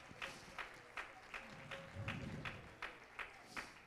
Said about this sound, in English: Can we just clap our hands and give him praise? Thank you, Jesus. Thank you, Jesus.